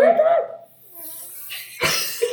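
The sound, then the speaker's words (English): A short exclamation gives way to a buzzy, wavering hand fart made by sucking air through cupped hands, followed by a sharp breathy burst and a brief vocal sound. “I farted by inhaling through my hands.”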